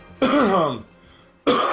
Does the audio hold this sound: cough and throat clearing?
yes